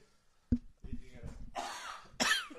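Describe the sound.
Coughing: a sharp first cough, then a few rougher, throaty coughs and breathy bursts, ending with a loud harsh hack. A voice can be heard faintly in between.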